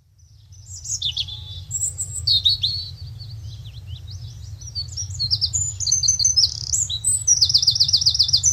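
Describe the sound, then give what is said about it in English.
Several birds chirp and sing continuously, their bright, overlapping tweets and trills filling the air over a low, steady rumble, growing busier and louder toward the end. “Waking up to the sounds of birds makes the morning a little sweeter, a little easier.”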